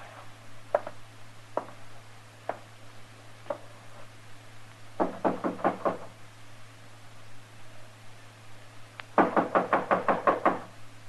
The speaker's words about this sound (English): All right, knock on the door. Tell him you want to talk to him.